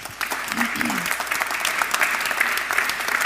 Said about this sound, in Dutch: Mag ik een applaus voor Vincent Karremans.